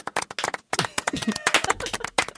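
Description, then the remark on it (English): Rapid, irregular slaps of a man's hand against his own chest, sounding much like clapping, with dense bursts of sharp hits and some muffled voices mixed in. “He's slapping his chest.”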